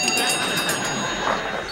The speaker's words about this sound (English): Look, Daddy, teacher says every time a bell rings, an angel gets his wings.